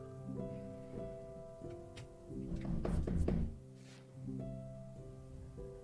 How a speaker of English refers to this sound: I knock on the door to the bell tower.